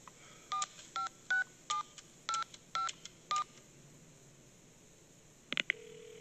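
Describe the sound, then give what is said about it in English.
A phone being dialed: eight crisp touch-tone beeps in a quick, steady rhythm, followed by a pause, a click, and a faint low tone starting as the line connects. No one speaks. “And I love that when we get the phone call first, where he looks at his watch and says...”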